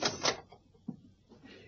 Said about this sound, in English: You can go. Open the car door and go.